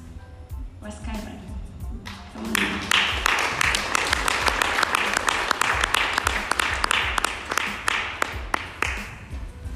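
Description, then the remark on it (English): A crowd claps in a steady, dense burst of applause to encourage a mother invited as the last person to speak, swelling after a couple of seconds and keeping going, with voices murmuring underneath. “Let's encourage her with a big clap.”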